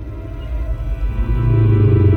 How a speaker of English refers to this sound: Let's have some more whale sounds.